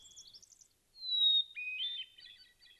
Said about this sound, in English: There's the hermit thrush. Well, that song always has a single introductory note, and it's followed by that whirling flute-like riff we're hearing, and then it'll be repeated. A short song, very sweet, incredibly complex.